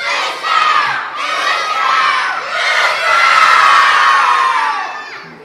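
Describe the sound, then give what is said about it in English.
A large group of children at a Bible school shout together at full volume in a loud, sustained burst, their voices blending into a high, excited roar with a brief dip before surging again. “Wow, y'all learned how to get loud.”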